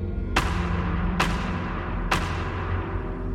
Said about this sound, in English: I think Sasquatches use this form of communication for something similar, but sometimes those tree knocks can be very threatening to the humans.